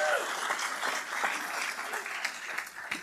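An audience applauds in a steady, dense wash of many hands clapping, with a few faint voices calling out at the start. The clapping holds even and fairly loud throughout.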